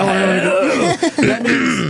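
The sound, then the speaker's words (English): Someone clears their throat loudly into the microphone in a couple of voiced, rumbling bursts with a brief pause between them. “I love the thing of clearing your throat into the microphone before you jump in.”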